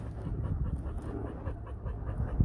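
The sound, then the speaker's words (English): A pit bull on a leash pants in quick, steady, rhythmic breaths that continue for a couple of seconds, with no voices over it. “Let me leash up my dog. I don't want him running around.”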